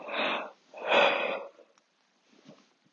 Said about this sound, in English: I'm so tired. I don't know if I'm going to cut out every time I yawn, because it's like every 5 minutes, because I'm laying down right now